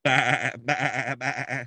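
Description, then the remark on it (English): A sheep bleats three times in quick succession, loud, each wavering bleat separated by a brief pause, with no other sounds around it. “Bah, bah, bah. Hey, nothing wrong with that. Not don't one sheep bit.”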